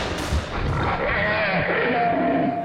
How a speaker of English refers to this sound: Then, in spite of my days of fright and disgust, my morbid curiosity triumphed, and as the last of the monstrosities oozed up alone from the netherworld, I drew my automatic pistol and shot it under cover of thunder.